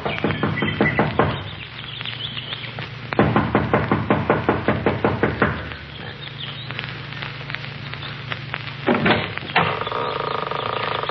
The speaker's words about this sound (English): gets out of the car, runs up the steps of the lodge to the front door. She knocks impatiently, looking about anxiously.